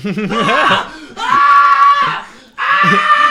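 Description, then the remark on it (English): Loud, high-pitched screaming in three sustained bursts with brief pauses between, harsh and strained. “You're not used to this much screaming.”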